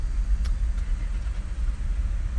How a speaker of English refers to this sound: oh, there's a big train coming. Big train.